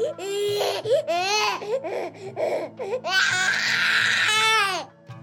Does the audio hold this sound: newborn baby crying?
yes